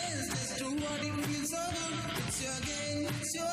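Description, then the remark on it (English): A loud, full-sounding music track plays back, with punchy drum hits on a steady beat under layered sustained tones and a forceful, strained vocal line. “This dude has like legitimate music out.”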